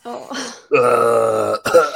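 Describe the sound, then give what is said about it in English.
A loud, throaty cough with a strongly voiced, croaky, almost burp-like tone: a short rasp, then a long strained hack, then another sharp burst, with no talking around it. “I've got this weird cough at the moment, and it's”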